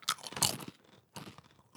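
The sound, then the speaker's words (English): Loud crunching of a stale, sweet Korean cookie snack being bitten and chewed, in two bursts of crackly, brittle noise separated by a short pause, with no talking. “Mysterious Korean cookie snack. You want to crunch on this?”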